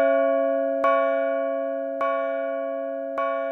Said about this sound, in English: After a very, very long time, the clocks began to chime again, one after another.